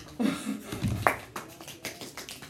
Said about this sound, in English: Golf clap.